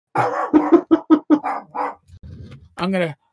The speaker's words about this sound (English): There's my doggy going crazy.